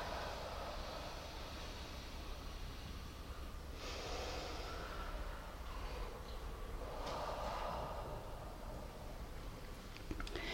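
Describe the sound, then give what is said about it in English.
Three slow, deep, even breaths from the belly, drawn in through the nose and let out through the mouth, soft over a faint steady background hum, with no talking. “Take three long, even breaths from the belly, through the nose and out your mouth.”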